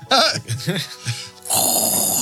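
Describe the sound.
A voice imitates water and grit draining through a metal drain: a few throaty, gurgling bursts followed by a steady, loud hissing rush that holds for almost a second.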